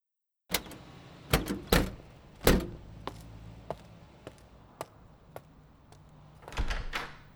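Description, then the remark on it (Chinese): The door of a home is unlocked and opened: a series of sharp clicks and clunks from the lock and handle, irregularly spaced, ending in a louder rattling burst. No one speaks. “不会，你先去开门。”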